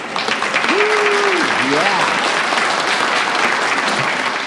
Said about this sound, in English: Coney Island, hot dog extravaganza, hoedown. Who had hot dogs? Who had two? Let's give a round of applause to the kids and gang that put it all together.